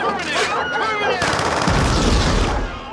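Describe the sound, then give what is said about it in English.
A rising, whining mechanical tone gives way to a sudden, loud roar of rapid continuous gunfire from a Gatling-style laser minigun, with deep rumbling explosions booming underneath until the end. “Franco's Terminator character pulls out like the Gatling laser gun, like kind of like a minigun”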